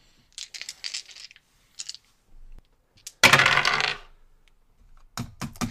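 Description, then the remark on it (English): Several light clicks and taps lead into a loud rattling tumble of dice across a hard table for a stealth roll in a tabletop game, with an added luck die, settling after about a second, followed by a few sharp final knocks. “I'm going to add a luck roll dice to that.”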